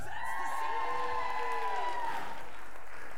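A crowd applauds steadily, with dense clapping and cheers and a few sustained whoops riding over the top, then gradually thins out toward the end.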